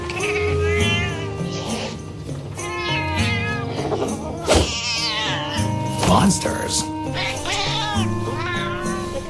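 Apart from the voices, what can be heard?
cat meowing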